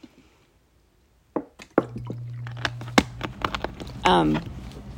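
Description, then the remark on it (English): Water being sipped: after a moment of silence come soft wet clicks, small slurps and swallows, with a brief low hum midway and a short voiced gulping sound near the end. “I've got to take another sip of water.”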